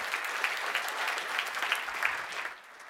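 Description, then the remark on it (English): Steady applause from an audience for the panel, a dense patter of many hands clapping at moderate volume for a few seconds before tapering off near the end. “So, let's give thanks to our panel here. Give him another hand,”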